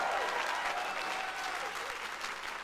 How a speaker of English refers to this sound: Come on, if you believe it, give God a big clap of praise right now.